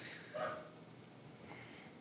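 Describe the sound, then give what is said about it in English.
A dog gives a short, muffled bark, then a fainter snorting huff about a second later, both quiet against a soft background hiss. “So, okay, dog, I know it's a lot to take in, but you can calm down.”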